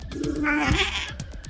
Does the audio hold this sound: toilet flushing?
no